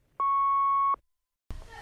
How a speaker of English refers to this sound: I can't come to the phone right now. At the tone, you know what to do.